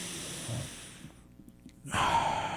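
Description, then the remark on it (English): An audible deep breath: a long airy inhale, a brief pause, then a strong breathy exhale through the mouth. No talking. “I use every opportunity to remind myself to pay attention to my breath.”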